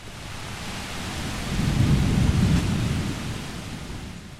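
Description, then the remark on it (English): Heavy rain pours down for hours in Manaus, a city in the Amazon rainforest, in a steady, dense hiss. A low rumble of thunder swells up midway before fading back under the downpour. No voices. “And appropriately enough, it was absolutely chucking it down with rain for hours upon hours.”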